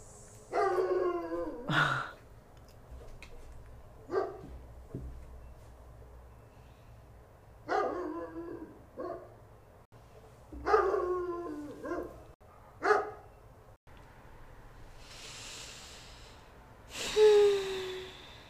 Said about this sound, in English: I had to stop the recording because I heard the dog barking way too loudly on the headphones, and I was like, oh, that's is it going to definitely sound like that?